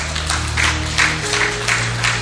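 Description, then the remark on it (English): A few people at the front of an audience clap in a loose, steady rhythm, bursts arriving roughly every half second, with a low steady hum underneath and no voices. “You see, only you in the front are clapping.”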